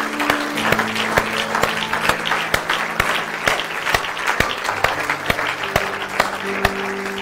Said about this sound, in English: So give yourselves a nice round of applause this morning.